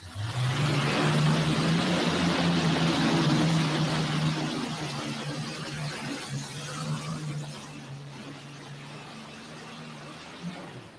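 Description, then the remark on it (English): The turbocharged Allison aircraft engines of the River Rat pulling tractor roar loudly with a steady low drone that holds strong for several seconds, then gradually fade and weaken toward the end. “Let's see if those Allison aircraft engines are all sync, working good.”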